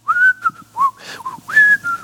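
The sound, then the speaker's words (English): Someone whistles the bright, catchy theme melody of The Andy Griffith Show in short phrases, with clear sustained notes and quick slides between them, and no talking over it. “What are you doing? Oh, I just love Andy Griffith. I love that show, and I just figured I'd bring that.”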